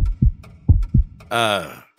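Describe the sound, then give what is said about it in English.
A heartbeat sound effect from a detailed model of a human heart, not a real heart, coming from a package, thumps in low, muffled pulses, a tight double beat followed by another, then a brief voiced tone cuts in as the beats stop. “It sounds like a human heart.”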